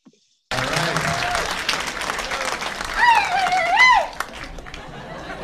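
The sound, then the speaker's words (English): An audience at a show breaks into steady, dense applause that carries on for several seconds, with a rising whoop or whistle riding over the clapping partway through and some murmuring beneath it. “Anyone that just applauded, those are the people you can get pot from at the end of the show.”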